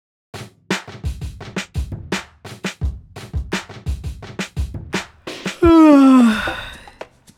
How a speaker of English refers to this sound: That yawn was intentional, because the fifth best way to exercise your brain, and this is for me the most surprising thing in this book. You know the fifth best way? It is actually to yawn.